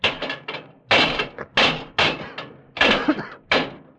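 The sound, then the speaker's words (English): Heavy metal levers bang and pry against locked brass doors in the base of a monument as people try to break them down, about eight loud clanging blows in an irregular rhythm, each ringing briefly before the next strike. “Those are brass doors in the base, and they're locked. The machine, it must be in there, inside. We must get it. Break down the doors.”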